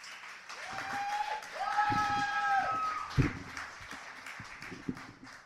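An audience claps and cheers steadily for several seconds for a contestant after the judges' scores are read, with whoops and a few sustained high shouts or whistles rising above the dense, crackling applause.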